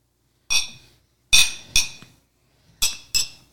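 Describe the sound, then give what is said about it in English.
Glasses clink together in a toast, five bright ringing chimes at uneven intervals, each briefly resonating before fading, with no talking. “Air clank.”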